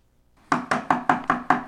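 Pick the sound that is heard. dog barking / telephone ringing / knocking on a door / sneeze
knocking on a door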